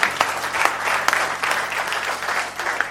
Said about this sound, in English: A round of applause for Pastor.